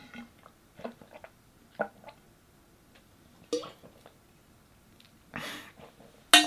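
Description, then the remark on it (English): Quiet handling of a water glass as someone drinks during a water break: scattered light clinks and taps, soft swallowing and mouth sounds, then a few sharper bursts as it is set down or bumped near the end. “Quick water break and posture break.”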